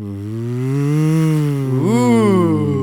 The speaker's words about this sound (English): Ooh. Ooh, I like that. Is that speedboat? Yeah. Nice.